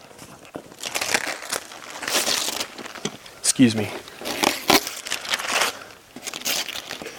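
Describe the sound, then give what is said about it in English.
Wrapping paper being torn off a gift, with loud crinkling and ripping bursts that come and go for several seconds while a person briefly speaks. “What thrill in opening the gift. And you just go through the motions of trying to like respect the wrapping paper.”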